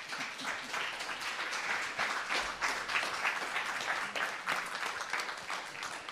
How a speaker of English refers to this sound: And what I'd love for us to do as a church, would you just stand up today and just put your hands together and let's just give him a round of applause as he comes to the stage.